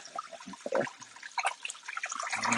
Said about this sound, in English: Let me rinse this can, because we recycle here at Cooking in the Dark.